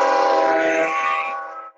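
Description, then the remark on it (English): A loud, sustained horn blast from a passing train, with a rich, chord-like tone, holds steady for nearly two seconds, then fades out. No one speaks over it. “Here comes this fucking train again.”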